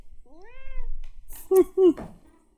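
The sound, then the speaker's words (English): A cat meows: one drawn-out, rising-and-falling meow, then two short, louder, clipped calls in quick succession. “Go away, kitty.”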